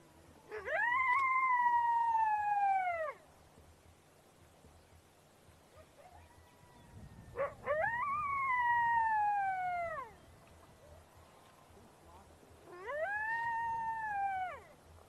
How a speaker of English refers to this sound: Example 1, Lone Coyote.